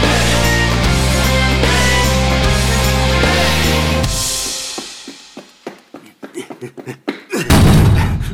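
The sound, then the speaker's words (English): Music fades out, then a series of sharp thuds on a door follows, uneven and growing louder, ending in a heavy bang. No one speaks. “Knocking the door.”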